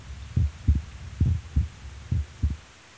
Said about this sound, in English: It was just the two of us, and I was laying basically on his chest and listening to him. Could still hear his heartbeat then.